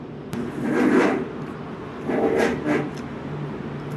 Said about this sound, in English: It's crazy they even make chairs that can make such a loud noise when scooted. Why don't you just engineer quieter chairs, everybody? With less aggressively angled feet.